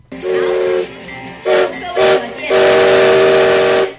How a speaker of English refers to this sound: Premier Su pulled the whistle again and again with a smile on his face, waving frequently in exultation.